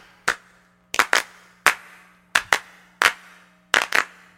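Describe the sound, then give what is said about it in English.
Several people clapping together on cue during an action song, about eight sharp, loud claps in a loose uneven rhythm, some landing as quick doubles, with no talking and a faint steady hum underneath. “Now everyone clap.”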